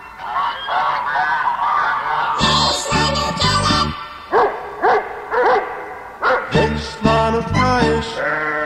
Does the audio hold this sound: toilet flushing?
no